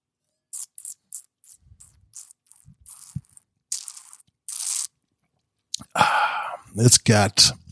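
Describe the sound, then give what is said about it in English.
Someone sips and tastes an Oregon Pinot Noir red wine: a series of short, wet mouth sounds and small slurps, then a longer, louder gurgling slurp as the wine is drawn over the tongue. “It's got all the characteristics of Oregon, and I'm going to take a sip because, well, usually I go 3 minutes and it's only two now, but I'm kind of thirsty.”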